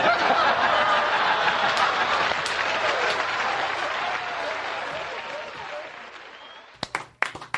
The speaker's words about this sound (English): We're applauding. Why are we applauding after we listen to Rickles? Because we took a break and we didn't know how to come back in.